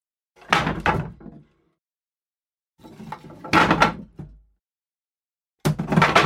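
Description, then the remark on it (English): Heavy double doors rattle and thump in three separate bursts, each a rough clattering shake lasting about a second, as if being pushed repeatedly from the other side. Fairly loud, with no voices. “Followed by the doors moving.”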